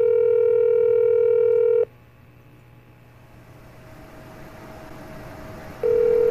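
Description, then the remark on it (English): In a commercial where Kermit the Frog calls 911, a loud, steady telephone dial tone hums for a couple of seconds, then cuts off for a quieter hissy stretch as 911 is dialed, before the tone sounds again at the end. “And this is the one where Kermit calls 911.”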